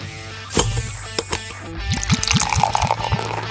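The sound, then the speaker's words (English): Beer pours into a glass, starting with a sharp clink, then a steady glugging stream whose pitch rises as the glass fills. No voices are heard. “Pour another round and drink with us as we explore the stories behind your favorite beers and breweries.”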